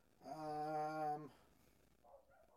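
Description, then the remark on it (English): Dogs make noise upstairs: a single drawn-out, tonal whine or howl lasting about a second, fairly quiet, followed by fainter, softer sounds in the background. “The dogs. Dogs upstairs, you know?”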